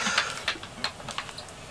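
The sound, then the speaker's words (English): Paper pages of a quiz being turned: a quick series of soft, crisp rustles and flicks, uneven in rhythm and fairly quiet, with no talking over them. “Well, I did the quiz, and you hear these pages turning.”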